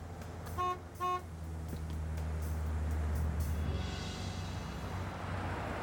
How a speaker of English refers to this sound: Hey, a tow truck.